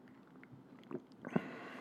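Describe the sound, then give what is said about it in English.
Someone takes a quiet sip of an IPA beer of 6.7% alcohol: soft wet mouth noises, a brief slurp and a gulp near the end, with no talking. “Let's take another sip of this one.”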